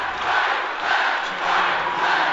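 A large arena crowd of BYU fans rises to applaud their Cougars, leading Utah 72-60 in a basketball game with 89 seconds to play: sustained cheering and applause, a dense wash of noise that swells in a few gentle waves and never drops off, with no speech.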